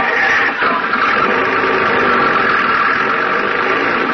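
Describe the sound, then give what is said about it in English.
The engine of a roadster car, driven with no windows and the top down, runs steadily with a low, continuous hum and rumble, a brief dip in loudness near the start, then an even mid-pitched drone with no voices. “Oh, this is a roadster.”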